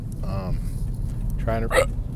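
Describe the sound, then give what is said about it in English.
Two sharp, voiced hiccups from a person, the second about a second after the first, over a steady low rumble of background noise. “I got the hiccups.”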